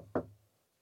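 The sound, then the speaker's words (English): A single dull knock on a toilet door while someone is inside, fairly loud, with a short low resonance that fades quickly into quiet. No voices. “Knock on door.”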